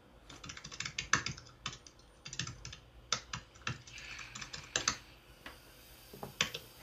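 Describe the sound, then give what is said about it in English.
Rapid, uneven keystrokes clatter on a computer keyboard for several seconds, fairly quiet, with bursts of quick taps separated by short pauses and no voices. “Now we're typing.”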